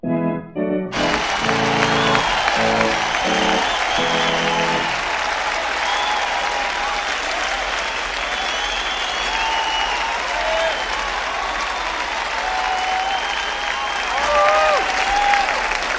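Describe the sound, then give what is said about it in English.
A large audience bursts into sustained, loud applause with scattered cheers and whistles at the conclusion of a performance, continuing steadily for about fifteen seconds after a brief musical flourish at the start. “a cheer rises from the audience as the applause signals another triumphant conclusion to a night out here at the Playhouse”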